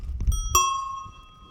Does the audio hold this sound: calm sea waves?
no